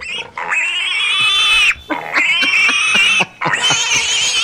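A pig lets out three long, loud, shrill squeals in quick succession, each separated by a brief pause, with no talking.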